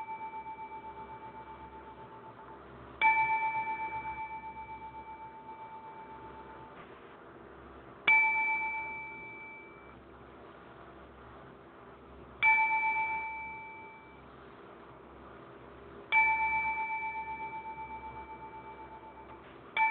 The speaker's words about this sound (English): To all in the animation or in the anime industry around the world, to fans of anime, we pause for a moment of brief silence, followed by 10 bells.